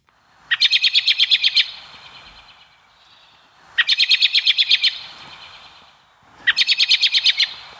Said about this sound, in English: I'm not that good with bird calls, but maybe a robin? That is a robin. You are absolutely correct.